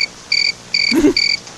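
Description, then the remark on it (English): A cricket chirping sound effect: steady, evenly spaced trills, a high buzzing pulse repeating about four times, with a brief low muffled thump partway through and no voices. “Should have done crickets though.”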